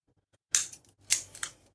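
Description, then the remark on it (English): Scissors snip into a pie's pastry top, four or five quick crisp cuts in an uneven rhythm over about a second, with no talking. “And then what I recommend you do is find some scissors and then chop into the top of it.”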